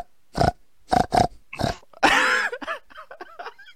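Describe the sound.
A pig grunts and oinks: four short, loud snorts, then a longer drawn-out squeal, trailing off into several quicker, softer grunts. No one speaks.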